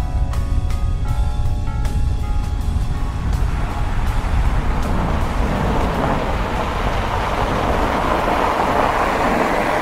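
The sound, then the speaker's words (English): A steady, loud engine rumble from a car in motion, with a few faint clicks and a whining tone early on, continuing without pause and no one talking. “Either way, it'd be nice to stretch our legs and get out of this car for a little bit.”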